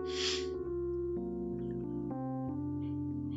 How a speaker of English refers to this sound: I think that was the first sniffle of … rant